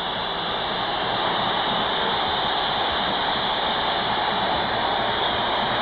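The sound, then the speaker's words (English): A large arena crowd at a game, a few minutes in as Magic makes an appearance, roars and cheers in one continuous, loud wash of noise, steady for the whole stretch with no single voice standing out. “Listen to this crowd. They speak for us.”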